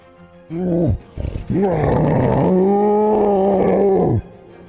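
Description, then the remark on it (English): A person lets out a loud, throaty roar: a short bellow, a few rough grunts, then a long sustained roar lasting a couple of seconds before cutting off. “And I think I'm just going to roar just as much as I can to get his attention as soon as I get up to him.”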